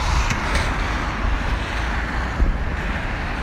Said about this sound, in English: Fucking car.